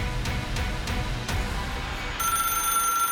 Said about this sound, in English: The telephone was ringing. And for some reason, I answered it.